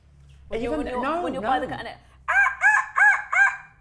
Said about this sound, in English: What about the call of a seagull?